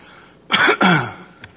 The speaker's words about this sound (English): I had a coughing fit on World News Briefing the other day, and I just couldn't get a handle on it just like this